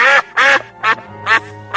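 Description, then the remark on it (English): Angry geese honk loudly, five harsh, nasal calls in a quick, steady rhythm with short gaps between them and no talking. “Until next time, stay away from the angry geese.”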